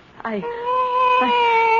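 A cat mews in one long, plaintive, drawn-out cry, fairly loud, starting with a short rising note and then holding a steady wail, with no talking.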